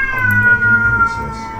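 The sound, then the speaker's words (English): A cat lets out a loud, sustained yowling meow, its drawn-out wailing tone holding steady for over a second with no talking. “Even the cat is gonna sing along.”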